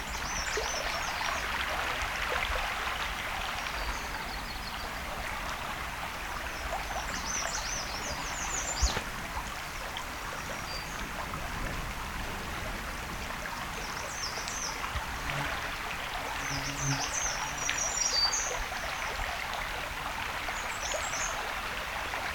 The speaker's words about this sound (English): Sounds like we got black and white warbler here.